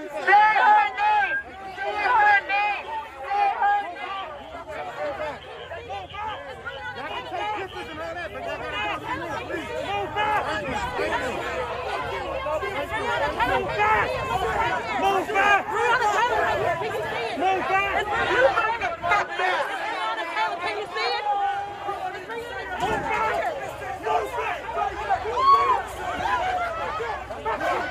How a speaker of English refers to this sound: And the crowds of protesters were out there screaming at Rand Paul, saying, say her name. Say her name. Say her name.